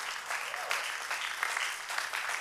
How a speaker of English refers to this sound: I want you to clap your hands unto the Lord if you agree with that.